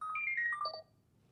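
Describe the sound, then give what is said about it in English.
A programmed toy robot gives a quick run of electronic beeps, stepping downward in pitch through a short melodic jingle, bright and tonal, lasting under a second before fading to quiet. “Do you hear that beep at the end?”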